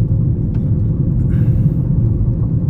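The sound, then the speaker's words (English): A car rolls along a loose gravel road that is being renovated and repaved, giving off a steady, loud low rumble that holds without a break for the few seconds, with no voices. “I'm on a loose gravel road.”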